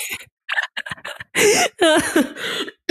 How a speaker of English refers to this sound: You made me cough.